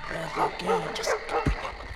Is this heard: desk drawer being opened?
no